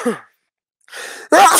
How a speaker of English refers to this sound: Fucking cunt, I hate sneezing.